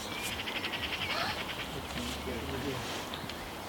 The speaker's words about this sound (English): What was that bird? Who knows what that is? Noisy bird? I don't know anything. It is a magpie, isn't it?